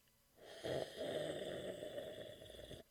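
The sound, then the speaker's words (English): A man takes a long, noisy slurp of coffee, a steady rasping sip lasting a couple of seconds, fairly loud and with no talking over it. “He's drinking coffee or something. That is correct.”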